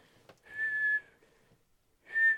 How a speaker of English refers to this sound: What is that? It's her with the whistle, like the end of the. She's on the door and she grabs the whistle and she's like.